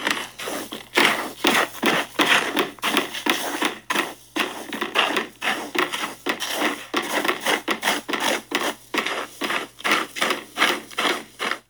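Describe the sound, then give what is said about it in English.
A cat named Alice scratching and raking in a litter tray after relieving itself: rapid, repeated gritty scrapes in quick bursts with brief pauses, fairly loud and continuous, with no talking. “It's actually the sound of our cat having a shit. Oh, when they do that thing in the litter tray.”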